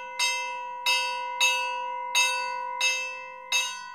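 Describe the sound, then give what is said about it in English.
A big, thick steel bell plate on a sound-effects box is struck six times at a brisk, slightly uneven pace, each clear metallic clang ringing on with sustained tones, imitating a train bell that goes off when a train departs. “And the box amplifies, and then it has a bell plate, which is just like a really big, thick plate of steel.”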